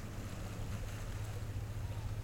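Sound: ocean waves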